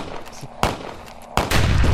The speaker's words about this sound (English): It's like, oh, duck! Why do, like, I hear this shit and I instinctively duck? That's how you know it. Hey, what the fuck? Who the hell down the street just get shot?